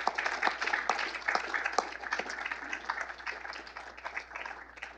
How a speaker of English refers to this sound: Please give them a heartfelt round of applause.